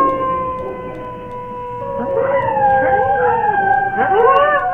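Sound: wolf howling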